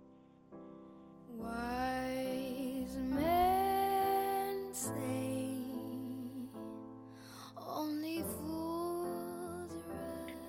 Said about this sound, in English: Your third song today, Ruahei, is …, …. We'll have a wee listen.